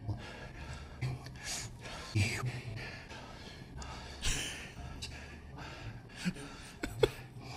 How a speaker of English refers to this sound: They just edited out all the words and kept the weird breathing.